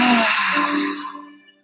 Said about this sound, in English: So we're just closing our eyes and literally all we're doing is breathing. So breathing in through our nose and taking a deep exhale through our mouths.